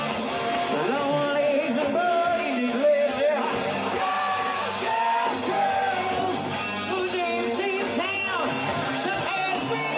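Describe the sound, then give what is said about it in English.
A man yells loudly and almost without pause for about ten seconds in a video being played, recorded in Monte Carlo, his strained voice sitting on top of a dense, noisy background that stays at a steady level throughout. “In denial yelling.”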